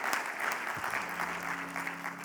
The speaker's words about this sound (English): All right. Let's at least clap